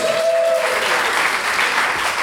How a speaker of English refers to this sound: All right, dog pound. Come on down. Everybody give him some round of applause.